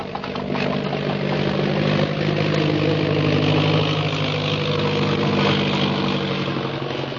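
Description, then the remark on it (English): A steady, loud airplane engine of a plane bearing the Purple Triangle drones without a break, its deep hum and rough overtones holding even from start to finish with no voices over it. “You hear an airplane motor? Yes. There. There is airplane.”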